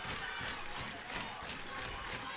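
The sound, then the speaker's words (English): A crowd of Richmond fans, up on their feet, claps and stomps on the bleachers in a steady rhythm, heavy thuds pounding on the hollow bleachers amid a loud, continuous wash of cheering noise. “Now the Richmond fans are all up and clapping, stomping on the bleachers.”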